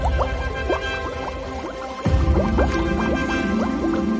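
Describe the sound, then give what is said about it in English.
A family of ducks dives underwater in a pond: rapid water drips plink over a steady liquid burble, then a sudden louder splash about halfway through gives way to fuller, churning water with drips continuing. No voices. “So the duck's entire family ducked underwater.”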